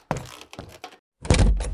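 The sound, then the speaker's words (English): Dull, hollow knocks on a door: three separate raps spaced unevenly, then a short pause and a louder, heavier pounding burst. No voices are heard. “You know, it's customary for the secretary to answer the door.”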